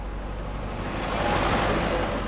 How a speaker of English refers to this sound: We climbed up into the cab of a huge Mack plow truck for a ride up Big Cottonwood Canyon with Supervisor Shawn Wright, one of the veteran plow drivers in the canyons.